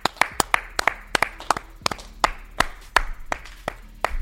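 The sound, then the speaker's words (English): Hands clap in a quick, slightly uneven rhythm, about a dozen sharp, crisp smacks over four seconds, with no one speaking. “Clap it up.”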